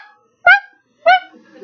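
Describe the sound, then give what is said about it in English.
A person's voice imitates a little chihuahua's bark with two sharp, high-pitched yaps about half a second apart, loud, followed by faint background murmur. “Then all of a sudden we're like, that little chihuahua scared me. You were the bark.”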